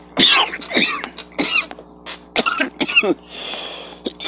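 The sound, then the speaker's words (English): A loud coughing fit: a run of harsh, raspy coughs in quick irregular bursts, with a throat-clearing rasp near the end and no talking. “20 seconds in, I'm coughing.”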